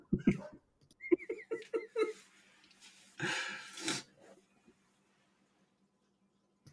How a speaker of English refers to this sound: Oh, God, the dogs are barking. Hold on.